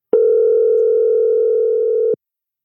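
One loud, steady electronic ringing tone from an outgoing phone call holds for about two seconds, then cuts off abruptly, with no voices around it.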